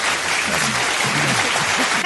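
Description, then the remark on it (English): A crowd applauds steadily to welcome a musician guest to a show, a dense wash of clapping that holds loud and even for about two seconds, with a few faint voices murmuring underneath before it cuts off. “We have a crowd.”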